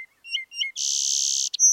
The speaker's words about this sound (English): We're hearing a song sparrow over here. Dip, dip, dip. Different trills and buzzes. Song sparrows will sing throughout the winter, but the increase in song is correlated to increasing day length.